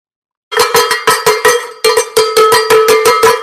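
A cowbell, the cowbell of victory rung after an Indiana win, clanks loudly in a fast, steady rhythm, a run of bright metallic strikes with a short pause midway, ringing on its own with no voices.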